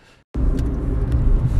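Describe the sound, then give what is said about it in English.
Low, steady engine rumble inside a moving car driving back from a showing of the film Pet Sematary kicks in after a brief silence, a dense droning hum that holds loud and constant with faint higher whooshes above it. “I are in the car right now. We're driving back from seeing Pet Sematary”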